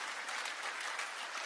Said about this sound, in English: Yeah, we should put our hands together. We are blessed.